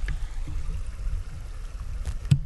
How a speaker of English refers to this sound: Okay, right there I just switched it to zone in just to the front. So we'll see how that does. We'll do this little experiment on this episode. Oh shit, that wind is ripping.